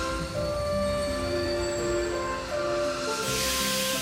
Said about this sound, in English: late that night, I did hear sounds, though not of ringing bells. From outside came the sounds of hissing steam and squeaking metal.